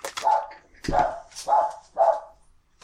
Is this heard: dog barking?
yes